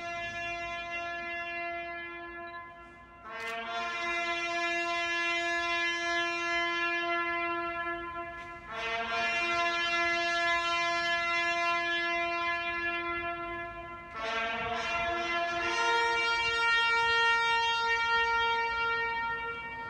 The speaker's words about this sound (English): every evening at 8 o'clock, buglers from the Last Post Association close the road which passes under the memorial and sound the last post. Let us end with the ceremony during the time of COVID, without crowds and with the accompaniment of birdsong.